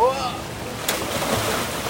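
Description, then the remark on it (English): A person jumps backwards into a river: a single sharp splash into water, followed by a few seconds of sloshing, rushing water noise. A brief voice sounds just before the splash. “Right, okay, so I'm gonna jump backwards, make a big splash.”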